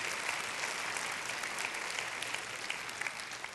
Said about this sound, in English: Come on, let's give the Lord a clap offering.